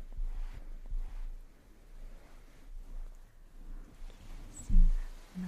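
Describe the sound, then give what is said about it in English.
A soft pillow is squeezed and kneaded, giving quiet, muffled fabric rustles in an irregular rhythm, with one slightly louder squish near the end and no voices. “Squishy pillow, right?”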